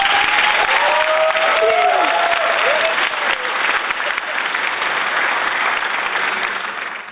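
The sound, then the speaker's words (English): A loud, steady burst of crowd applause, dense clapping from many hands that holds for about seven seconds, with a few whistles or cheers rising near the start. “I think you deserve a round of applause.”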